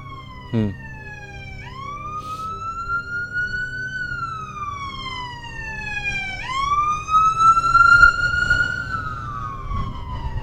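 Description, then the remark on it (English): An emergency vehicle siren wails outside in slow rising and falling sweeps, growing louder toward the end over a low rumble of traffic. “It's funny hearing the sirens here, the holographic nature of what we're talking about, you know, showing up.”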